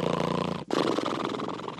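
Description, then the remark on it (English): A voice imitates the apostle Peter snoring while asleep in prison: a rough, buzzing rattle held for a moment, a brief break, then a second raspy snort-like breath, steady and fairly loud, with no words spoken. “But he was a Galilean fisherman. I think he snored.”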